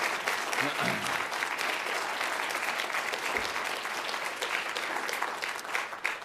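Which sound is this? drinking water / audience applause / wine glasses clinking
audience applause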